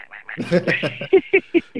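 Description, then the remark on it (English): A voice imitates the little quacking sounds a pet budgie makes while biting a thumb: a drawn-out nasal quack, then four short, evenly spaced quacks, fairly loud. “And then otherwise, when she's biting my thumb, she makes these little quacking sounds.”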